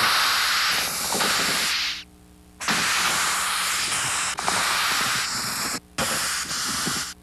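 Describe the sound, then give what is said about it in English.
Loud, harsh distress hissing from a Madagascar hissing cockroach in three long bursts, each a rush of white-noise air broken by short pauses, steady and with no voices. “They will make this incredible electronic, very white noise, very loud sound coming out of the size of the insect.”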